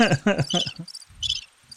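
A crickets sound effect: crickets chirp in short, repeated high-pitched trills, steady and fairly clear, with a brief low buzzing tone underneath at the start.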